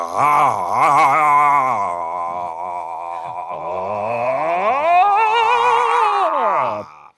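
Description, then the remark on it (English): A voice imitates a long, loud charging-up yell, holding one strained note with a wobbling vibrato for about seven seconds, swooping higher near the end before cutting off. “How about a little vibrato for variety? Like this.”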